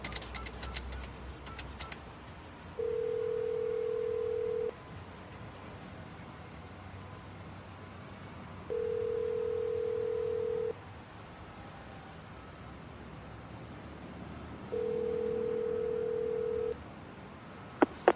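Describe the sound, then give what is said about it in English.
A call is dialed from a public phone booth in a city: a few quick clicks of dialing, then the line rings three times, each long steady ring tone spaced several seconds apart, over a low hum of road traffic. “Then I called it in hopes of setting up a secret meeting.”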